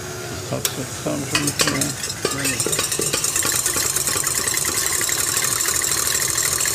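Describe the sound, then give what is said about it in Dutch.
Egg whites being whipped until stiff, a steady whirring, beating texture with rhythmic clicks and scraping against the bowl early on, settling into a continuous, fairly loud churning hiss with no talking. “Dan ga je het eiwit opkloppen, stijf kloppen.”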